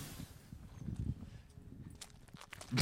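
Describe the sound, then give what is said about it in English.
Foley footsteps sneaking up to a house door thump and scuff at a steady walking pace, fairly quiet, with a few sharper clicks near the end and no talking. “That's a great Foley work of the footsteps.”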